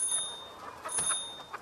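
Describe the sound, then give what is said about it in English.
A small bicycle bell rings a couple of times, its thin metallic chime lingering briefly, fairly quiet against a soft background hiss with no one speaking. “all I can hear is that bicycle bell of yours.”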